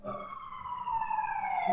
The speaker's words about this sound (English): Oh, there's a siren. Hold for the siren.